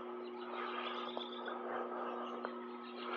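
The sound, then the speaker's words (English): Steady electrical transformer buzzing hum, caused by one coil inducting with the other, a constant low droning tone with a raspy buzz layered over it, holding even throughout with a couple of faint clicks and no voices. “You'd think if you could make a transformer that didn't buzz, you'd be a billionaire.”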